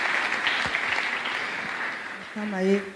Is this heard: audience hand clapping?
yes